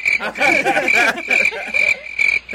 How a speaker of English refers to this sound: Crickets. Crickets, right.